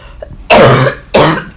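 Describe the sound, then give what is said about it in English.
Two loud, harsh coughs right up against the microphone, one after the other with a brief pause between them, the first a bit longer than the second. “I cough a little bit closer into that microphone.”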